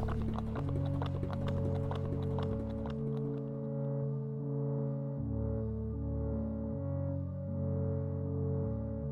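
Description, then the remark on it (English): Rapid, pounding hoofbeats of racehorses galloping over a steady low droning hum; after a few seconds the hoofbeats fade away, leaving only the sustained tones. “It was horses going kind of in the Kentucky Derby, like you're right on the track.”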